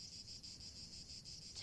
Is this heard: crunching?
no